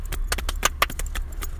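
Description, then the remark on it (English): Rapid, uneven slaps of skin on a cheek, about a dozen sharp smacks in under two seconds, with two noticeably louder hits in the middle and no voices. “See, when you slap it on the cheek, that's the noise it does.”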